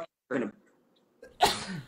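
A single sneeze: a short voiced intake, a brief pause, then a sharp, loud, breathy burst that trails off quickly. No talking.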